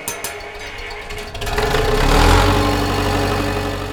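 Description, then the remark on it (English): A diesel tractor engine cranks over with a few sputtering bursts, then catches and settles into a loud, steady low rumble at idle, with no voices. “Dode fired up the tractor.”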